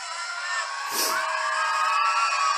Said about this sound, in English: This is from Right Side Broadcasting. As you hear, the crowd is going nuts.